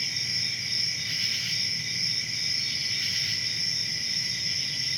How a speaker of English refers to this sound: Again, you're thinking, but that's a noisy kind of silence. The beat and pulse of cicadas in the night air somewhere in, well, I forget just where that was. And yes, it is noise.